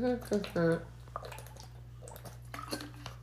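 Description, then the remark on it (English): A quiet sip of water: soft wet slurps and small swallowing clicks after a brief voiced murmur, over a steady low hum. “I'm gonna take a sip of water really quickly.”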